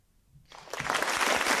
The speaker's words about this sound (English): No, don't applaud. Don't applaud, please.